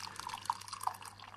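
Tea being poured into a cup: a soft, steady trickle of liquid with a few small bubbly plinks, quiet, with no one talking.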